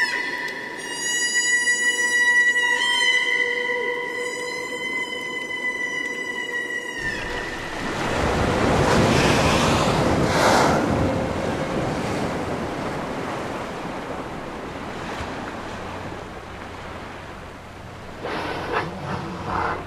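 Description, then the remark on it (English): A chorus of humpback whales sings underwater in the Pacific off Alaska in long, tonal, harmonic cries over the first seconds, then a broad wash of rushing water noise takes over with faint calls returning near the end. “Lisa Walker recorded this chorus of humpback whales in the Pacific off Alaska.”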